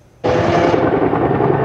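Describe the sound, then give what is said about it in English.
After a brief near-silence, the heavy roar of firefighting helicopters with water buckets starts abruptly and holds steady and loud as they make an air attack on the McGee Road wildfire on a steep mountainside above the upper Squamish Valley. It is a dense engine and rotor rumble with a low hum and no voices. “Choppers with buckets doing the air attack on the steep mountainside above the upper Squamish Valley, where after smoldering overnight and for much of the morning, the McGee Road fire was threatening to be on the move again as winds picked up”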